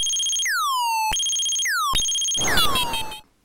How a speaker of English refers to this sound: If you manage to kill the birdie sentries, a new wave of them appear with the alarm sound again, and it sounds just like this.